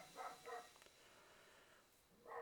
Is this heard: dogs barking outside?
yes